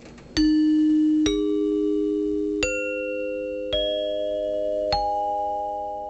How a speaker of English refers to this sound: Chimes in particular would have been an easy choice due to how common they were. Dinner chimes were often used to summon guests to the table, and it was also used to indicate the start and stop of intermission.